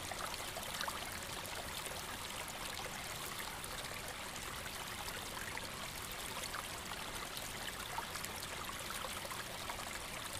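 A steady, continuous trickle of hot tea being poured from a flask into a cup, a soft splashing stream that runs evenly for about ten seconds, with no voices.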